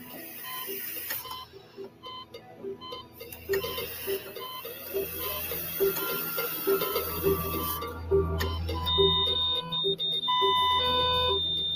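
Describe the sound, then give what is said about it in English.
Repeated electronic beeping from a boy's medical alarm, sounding as he stopped breathing; steady tones pulse over a dense, whirring mechanical background that swells and stays loud throughout, with no voices. “But when the boy stopped breathing, his medical alarm spoke for him.”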